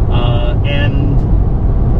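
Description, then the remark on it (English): Steady, loud low rumble of a car moving at speed on the E45 highway as it drives past a German milk truck, with a brief high whining tone near the start. “Probably a lot of shibboleths are getting rustled as we drive past that thing.”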